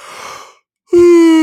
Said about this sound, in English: Oh, that's not fucking rude at all. Yawning in the ear of our audience.